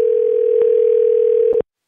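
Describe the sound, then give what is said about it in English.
A single steady electronic phone ringing tone, the kind heard while an outgoing call connects, sounds clearly for about a second and a half, then cuts to silence. “I think we should call Phil Shea and get him to answer all of our questions about the box.”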